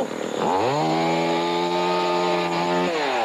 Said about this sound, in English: Another quiet, tranquil day in Derby. Oh no, that chainsaw Chuck again.